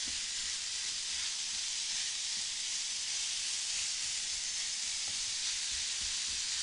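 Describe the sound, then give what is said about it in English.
About 1.5 pounds of ground sirloin sizzles steadily in a hot skillet, a continuous bright crackling hiss with faint pops, even throughout with no voices. “Here's our 1.5 pounds of ground sirloin. Okay. Are we chopping this up?”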